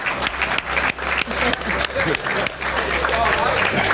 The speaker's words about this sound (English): Let's clap it up for me. Thanks, guys.